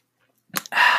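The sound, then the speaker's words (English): A quick sip of water: a short wet slurp followed by a louder breathy rush of air, with no talking. “You know, one thing I forgot to do was take a sip of water on my break, so let me sip this water real quick.”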